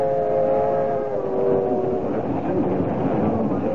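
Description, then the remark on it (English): A passenger train rolls along the rails with a steady, loud rumble and clatter, heard from inside its dining car; a sustained tonal whine sounds over it for the first couple of seconds before fading into the ongoing roar. “You know, I haven't been in a dining car in years. I didn't know they still have them.”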